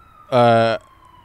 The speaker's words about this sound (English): I'm going to talk through the siren. I'm not pausing.